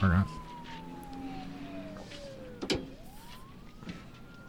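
A police car siren wails, its pitch sliding slowly down and then climbing back up, over steady background noise with a brief knock midway.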